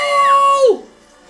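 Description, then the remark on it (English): A person lets out one loud, sustained scream into a microphone that holds a steady high pitch for over half a second, then drops sharply and cuts off into quiet. “I'm sorry to the mic. I screamed very...”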